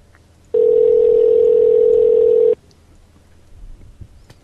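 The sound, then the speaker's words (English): A loud, steady telephone dial tone hums for about two seconds as a phone call is placed, then cuts off abruptly, leaving a faint low background rumble with no voices. “I'm going to call someone from Open Book.”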